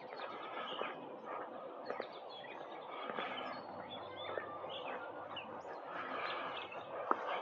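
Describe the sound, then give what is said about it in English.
Many birds chirp and twitter outdoors in a steady, overlapping chorus, fairly soft, with a few sharper calls standing out now and then and no one talking. “Listen to those birds.”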